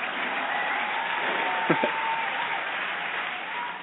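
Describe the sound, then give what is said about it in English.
A canned applause sound effect played from an applause button: a steady, dense wash of clapping and crowd noise that holds at an even level for several seconds, with a couple of brief sharper bursts midway. “get a nice 2-year applause button.”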